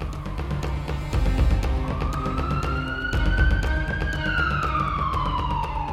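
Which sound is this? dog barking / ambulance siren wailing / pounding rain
ambulance siren wailing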